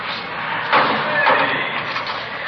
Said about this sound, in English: You want to step aside there? They want to lock that door.